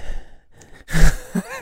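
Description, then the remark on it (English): A voice imitates a person in a radio studio breathing hard into a microphone: a soft exhale, a pause, then a loud, harsh rush of breath with a low rumbling push, like air blasting the mic. “Like, you're like breathing hard on the mic.”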